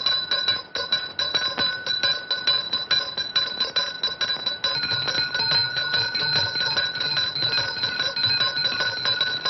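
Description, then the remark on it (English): A doorbell rings continuously, a rapid metallic trill that stays loud and steady for several seconds with no voices over it. “Up beside a doorbell rings.”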